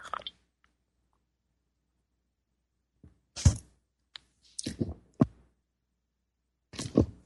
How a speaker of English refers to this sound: Time for me to take a sip of my tea here.